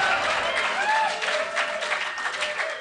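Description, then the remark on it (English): Steady, dense clapping from a large live audience fills the whole moment, with scattered cheering voices rising and falling through the applause. “You can hear it in their applause.”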